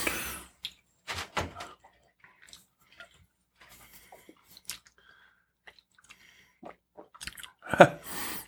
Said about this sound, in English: Do the Kentucky chew with that. Just do that chew and just keep it in your mouth a little longer and see how much more body it has.